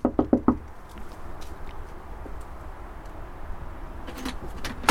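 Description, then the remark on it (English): Four quick, firm knocks on the wooden front door of a modest semi-detached house land in a rapid burst at the start, then fade into a low outdoor hum with faint traffic-like background noise. “So I'm just going to knock on the door and see what he has to say for himself.”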